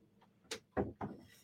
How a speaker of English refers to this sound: While we're seeing if we can get them back, I'm going to shut the door for a minute, because we have a lot of turtle building going on right now to get ready for the turtle. So here, let me shut the door.